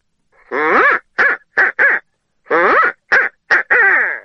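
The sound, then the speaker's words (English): An owl hoot blown on a turkey call, mimicking the 'who cooks for you, who cooks for you all' phrasing: two loud phrases of four rising-and-falling notes each, with a short pause between phrases, and no talking. “I can just kind of show you how I make an owl call”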